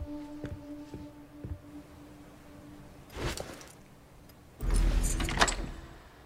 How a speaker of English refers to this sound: I also like that it takes after a lot of the old survival horror elements of, like, picking up an item and examining it, or putting a key into the door and turning the key.